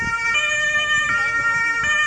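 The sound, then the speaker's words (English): Several ambulance sirens wail together, their steady tones overlapping continuously, with a low rumble of traffic and engines underneath and no talking, at a crash scene in Graz, Austria, where an SUV drove into a crowd and 60 ambulances converged. “60 ambulances converged on the scene in the city of Graz.”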